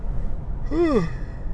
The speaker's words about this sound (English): Yeah, that's yawn number two, back to back. Man, maybe it's because I woke up super early this morning, or maybe this drive is just dragging me.